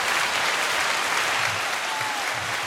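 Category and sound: sound effect, hand clap sound effect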